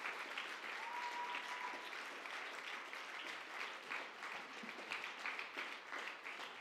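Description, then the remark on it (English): A large church audience applauds, giving the Lord a round of applause, a dense, steady wash of clapping that holds at an even level for the whole stretch, with no talking over it. “Why don't we all give the Lord a big round of applause?”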